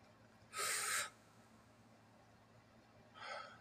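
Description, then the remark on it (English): A loud breath drawn in sharply through the nose, lasting about half a second, followed after a quiet pause by a second, softer intake, as in box breathing. “You breathe in your nose. Hold it 5 seconds.”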